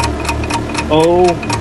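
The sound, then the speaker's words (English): A game show countdown clock ticks steadily, about four quick ticks per second, timing 60 seconds for a contestant to answer questions. A brief voiced sound rises over it partway through, and the ticking carries on without a break. “Clock starts now.”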